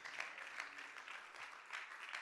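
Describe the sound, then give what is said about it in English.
An audience claps their hands in thanks to Jesus in a steady, dense patter of applause, fairly soft, with no one speaking over it. “If you're thankful for that, why don't you clap your hands and say, thank you, Jesus.”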